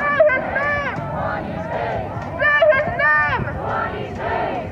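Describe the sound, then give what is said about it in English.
A crowd of protest marchers shouting and chanting together outdoors as they march southward in Portland, loud and continuous, with rising and falling vocal pitches layered over a dense background of babble and noise. “The march went on southward for about half an hour, chanting along the way.”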